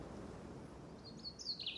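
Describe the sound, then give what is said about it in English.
A sparrow lets out a quick burst of high, bright chirps near the end, rising over a steady low background hum. No one is speaking. “Sparrow tried to wake them with his bill and his cries, but they were sleeping too soundly.”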